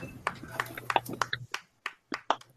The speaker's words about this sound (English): give a round of applause for Ajaka getting over $21,000, bro